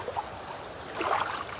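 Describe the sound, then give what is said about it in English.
A stream flows steadily in the morning, a soft continuous babble and rush of water with small gurgles, fairly quiet and swelling slightly toward the end. No voices. “And the water singing with us.”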